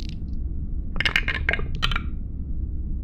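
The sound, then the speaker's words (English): Dice clatter down through a dice tower during a tabletop game roll in a quick burst of hard, bright clicks and rattles, a few tumbling impacts over about a second, against a low background rumble. “I like how I'm shaking the dice before I put it on the dice tower, like as if that makes a difference.”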